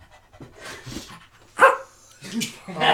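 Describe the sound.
A dog barks several times in short, loud bursts, with softer panting-like breaths between them, in an irregular rhythm.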